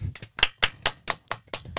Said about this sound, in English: Round of applause, guys.